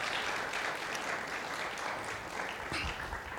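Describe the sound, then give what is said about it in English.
A crowd claps steadily for a few seconds for the community's worship leaders, a dense, even wash of hand claps with no voices standing out above it. “Now you can give them a round of applause.”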